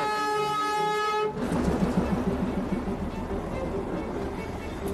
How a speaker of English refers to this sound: They call it the toy train of Darjeeling. Incredible little train that looks like a caterpillar winding its way up these steep mountain trails here. Here it comes, the toy train. It's only 2 foot wide.